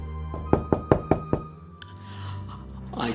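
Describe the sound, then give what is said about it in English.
Five sharp knocks on a door in quick, even succession, fairly loud, followed by quiet with faint rustling and a low background hum. “I heard a sudden thud at my door.”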